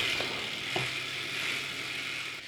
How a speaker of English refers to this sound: That timer is terrible. Yeah, that timer sounds like it's about to die. This is a very old game.